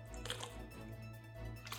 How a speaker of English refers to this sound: Let me take a sip of water really quick. I'm very parched.